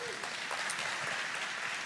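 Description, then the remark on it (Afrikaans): A church audience claps steadily to welcome a pastor as he comes up. The applause is a dense wash of many hands at an even, fairly loud level that holds for the whole moment without a break. “en terwyl hy opkom, kan ons hom ook 'n hande klap gee.”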